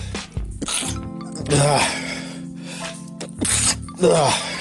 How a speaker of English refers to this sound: Just listen to me sneeze for the last 2 minutes.